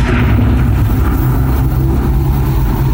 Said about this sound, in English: Oh, gods. Oh, no. Big mechanical scary door noises.